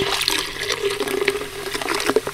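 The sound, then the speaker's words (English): Fizzy tonic water pours steadily into a container with gin to make a gin and tonic jelly, a continuous splashing and gurgling stream with a bright carbonated hiss, heard alone without any talking. “Some tonic water.”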